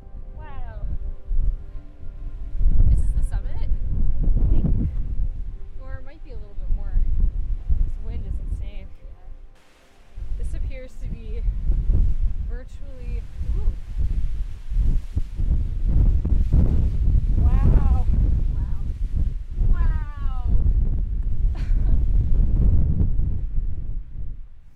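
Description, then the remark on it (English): Strong wind roars and buffets the microphone in a steady low rumble, nearly constant with a brief lull, while voices talk intermittently beneath it, at the steep top of a mountain during a hike. “And it was really windy and really steep.”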